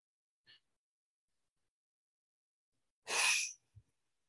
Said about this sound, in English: Inhaling through the nose, exhaling forcefully through the mouth, and just really focus on releasing, releasing, releasing, releasing, letting go.